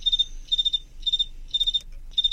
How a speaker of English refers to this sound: So here we go, and they're rubbing their wings about 17 times a second here during the chirp, and then they pause and chirp again.